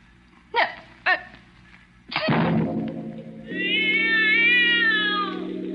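A cat meows: two short, sharp chirps, then a long, loud, drawn-out yowling meow that rises and wavers in pitch before trailing off. No one speaks.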